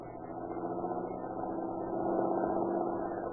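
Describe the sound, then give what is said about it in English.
A car engine hums steadily with a low, rumbling drone that grows slightly louder as the car approaches on an ocean highway, then settles into an even idle as it is pulled over at the curb. No voices are heard. “Say, here comes a car that looks like the boys Katzenberger's looking for.”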